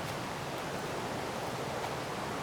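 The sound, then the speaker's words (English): Rushing river water makes a steady, unbroken hiss and roar spread across the range, holding an even level throughout, with no voices. “Walking away now, and I'm just pondering how the sound of this particular river might have affected you compared to, say, if I'd have taken you to a slow, gentle stream.”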